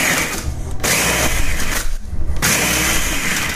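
A loud motorized blender grinds and churns a full container of ice, chopping it again into snow, its harsh whirring broken by two brief dips as the motor pulses, with rattling chunks throughout.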